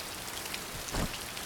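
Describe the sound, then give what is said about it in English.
Steady rain patters on a hard surface, a dense even hiss of drops with one brief heavier splash partway through, with no voices. “This place was pretty gross even before the rain.”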